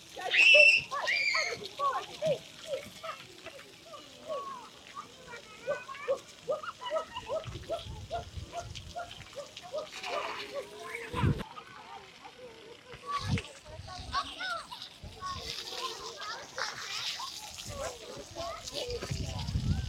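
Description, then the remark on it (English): Children's voices chatter and squeal over intermittent splashing and sloshing water, with a few sharper splashes standing out, the activity continuous. “Kids in water, trust me, they just love it.”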